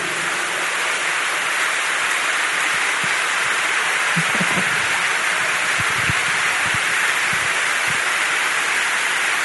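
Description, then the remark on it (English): An audience claps hands together, a steady, dense wash of applause that holds at an even loudness throughout, with no voices heard over it. “The Bible says in Psalm 47 verse 1, Psalm 47 verse 1 says, clap your hands, all ye people.”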